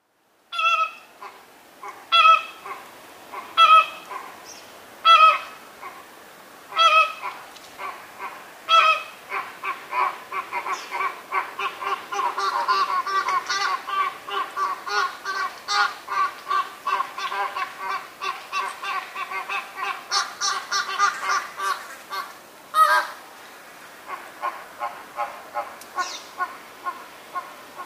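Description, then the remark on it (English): A group of flamingos, playing with each other in intense heat, honks, opening with a few loud, spaced calls before breaking into a dense, overlapping chorus of nasal, goose-like honking that continues to the end. “but the heat was intense, and just about the moment I was going to give up, these goofy exotic birds started playing with each other and made these sounds.”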